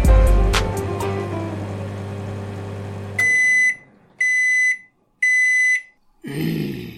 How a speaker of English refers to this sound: Do you think that that durian fruit I bought you is setting an alarm off?